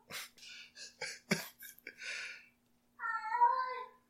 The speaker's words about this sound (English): Dude, look at that waveform for his meow. That's the littlest noise right there. 55 hertz cat.